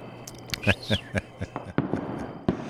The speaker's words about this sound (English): Enjoying our fireworks display.